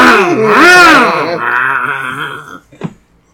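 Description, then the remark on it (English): A voice imitates a chainsaw revving: a loud, buzzy drone that climbs in pitch, wavers up and down for about two and a half seconds, then cuts off with a brief sputter. “The chainsaw rev. Come on, you just saw it.”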